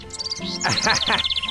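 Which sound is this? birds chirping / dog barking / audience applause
birds chirping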